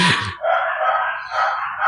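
Dogs bark loudly, their voices running together into a sustained, almost howling stretch that lasts the whole moment, with no one talking.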